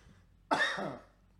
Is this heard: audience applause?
no